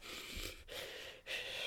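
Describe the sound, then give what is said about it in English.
A person imitates James Gandolfini's heavy, emotional breathing: three ragged, wheezy breaths in quick succession, fairly loud, with no talking. “But it's like James Gandolfini has this amazing way of like conveying emotion through breathing.”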